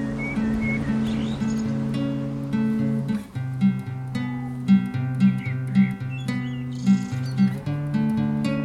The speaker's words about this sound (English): Well, ain't that just a beautiful intro? My favorite part is the birds. It just really immerses me in nature.